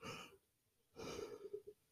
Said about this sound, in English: Oh, sorry, I yawned. It was just one of those things.